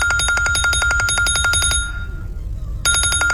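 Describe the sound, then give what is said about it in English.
A harsh electronic wake-up alarm set by the speaker beeps in a rapid, steady pulse, pauses for about a second, then starts beeping again, loud over a low background rumble. “So everyone has a preference when it comes to alarms,”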